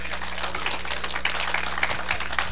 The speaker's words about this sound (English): Now, somebody ought to get excited and give the Lord a hand clap of praise.